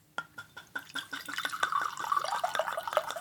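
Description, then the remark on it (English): Bourbon glugs and trickles into a goblet, a quick run of bubbly splashes with a rising pitch as it fills, steady and fairly soft with no talking. “Fact checker, get us some bourbon. All right, hand me your glass or bring it over here.”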